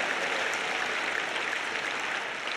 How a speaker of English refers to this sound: Clap your hands and love him. Oh, hallelujah.